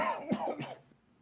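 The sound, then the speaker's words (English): A person imitates a man's repeated cough with a quick pair of rough, throaty bursts, fairly loud, fading out within a second. No words are spoken. “Every time he's coughing, he's like this.”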